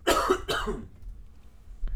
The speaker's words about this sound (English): You haven't been coughing all day. I don't know what's going on. Maybe it's like a defense mechanism.